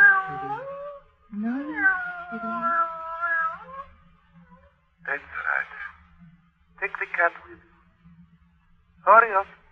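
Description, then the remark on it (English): A cat yowls and caterwauls in long, wavering, drawn-out cries, followed by several shorter, harsher meows, fairly loud against a quiet background hum. “Well, that's a handsome cat you've got there, miss.”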